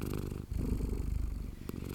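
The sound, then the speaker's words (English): A cat and her kitten, curled up on a rug, purr steadily, a low, continuous rumbling drone with a gentle rhythmic pulse, heard on its own without any talking. “When Papa left the room, that cat and her kitten were curled up comfortably on the rug singing their sleepy song.”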